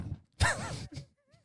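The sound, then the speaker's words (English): A single heavy thud of a fist banging a desk jolts the microphone with a deep boom, loosening it, immediately followed by a drawn-out vocal groan and a brief breathy sound. “Didn't bang the shoe, it was more the fist.”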